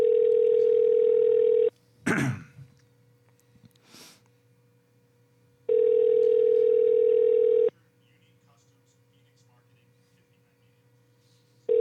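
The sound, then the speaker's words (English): A phone's outgoing ringback tone while calling a man about Comic-Con: steady, loud two-second buzzing rings separated by about four seconds of near silence, with a brief cough-like noise in one gap and a third ring starting at the end. “But we're gonna try to give him a call and see what's going on.”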